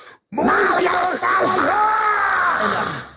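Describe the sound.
A voice imitates a huge creature's roaring bellow, loud and sustained for about three seconds after a brief gap, with a doubled, layered quality like two voices overlapping.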